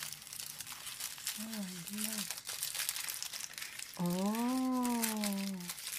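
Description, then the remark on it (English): Continuous crinkling of thin decorative paper wrapping on an almond bonbon, rustling steadily throughout, while a person makes a few short voiced murmurs and a longer drawn-out exclamation over it. “Oh, this is so pretty, the decoration paper.”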